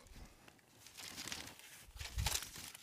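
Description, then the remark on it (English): Crinkling and tearing of paper wrapping as a gift box is torn open, with bursts of rustling and a louder rip near the end, no one speaking. “You got your box. Something's inside. You just go for it.”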